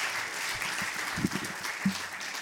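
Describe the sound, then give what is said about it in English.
A crowd claps steadily, a dense, continuous patter of many hands filling the space at an even volume, with a few faint voices or cheers briefly rising underneath. “Can I have another round of applause, please, for Angie?”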